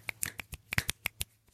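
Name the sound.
finger snaps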